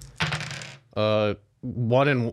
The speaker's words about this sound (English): The sounds of dice shuffling. Just one D10? One D10 and then another D10. Yeah, I guess two D10s, yeah.